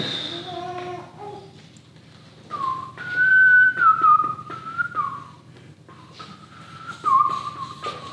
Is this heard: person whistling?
yes